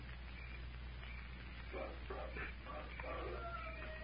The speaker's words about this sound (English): There it is. Wolf howl.